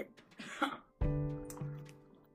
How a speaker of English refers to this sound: Stop clearing your throat.